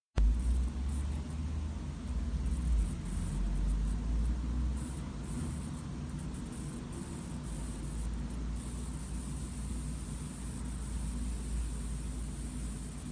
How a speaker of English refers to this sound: For some reason, static electricity plays a significant role in many of his tweets. Here is a recording he made of the static sounds he mentions.